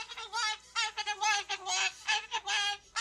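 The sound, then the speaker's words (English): A scared bird hiding under a small cabinet, not wanting to go to the vet, calls loudly and repeatedly in harsh, honking bursts, with short gaps between the rapid squawks and no talking. “it's just scared hiding under a little cabinet, not wanting to go to the vet”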